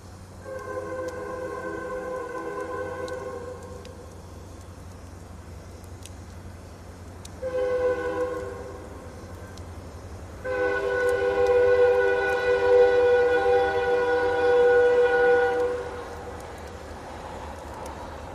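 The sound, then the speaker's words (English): A freight train rumbles past a park while its horn sounds in several sustained blasts, a short one and then a long loud one, over a steady low rolling drone. “There's another train.”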